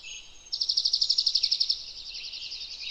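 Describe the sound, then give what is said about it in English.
A bird sings a rapid, high-pitched trill of about a dozen even pulses, then softer, buzzier notes, clear against a quiet outdoor background with no voices, in a sequoia forest on the western slope of the Sierra Nevada in central California, about 7,200 feet above sea level. “Whoa, so much bird song.”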